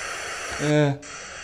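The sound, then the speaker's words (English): Steady, fairly loud static hiss from a looping video being played fills the whole recording, with a short voiced sound rising over it midway and a momentary dip in the noise before the hiss resumes. “There's the static, and it's the same loop.”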